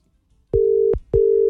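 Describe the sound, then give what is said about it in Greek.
A steady electronic telephone ringing tone sounds in two short, identical beeps separated by a brief pause, clear and fairly loud, with no voices present, as a phone call goes unanswered. “Θα πάει, θα μείνουμε στην αναπάντητη.”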